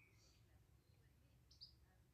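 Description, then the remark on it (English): A robin sings faintly on a farm in Sussex near Gatwick, a few thin high-pitched phrases and chirps rising over a steady low background rumble, with no one speaking. “Yeah, a little bit of birds. Robin in the background.”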